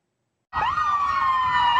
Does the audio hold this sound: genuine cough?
no